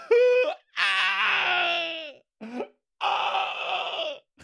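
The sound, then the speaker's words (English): A mournful keening wail of mourning: several drawn-out, loud cries rise and waver in pitch, breaking off between short gasping pauses, with no spoken words. “Keening is when you kind of wail and, you know, scream and kind of mourn someone at a wedding, at a funeral.”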